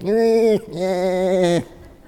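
Two drawn-out sheep bleats, loud, the first about half a second long and the second a bit longer, each wavering slightly before cutting off, with a short gap between.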